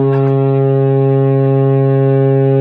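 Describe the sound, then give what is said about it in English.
A deep, loud foghorn blast drones steadily for a couple of seconds, a single sustained low blare rich in buzzing overtones, with no voices over it. “Oh, the foghorn.”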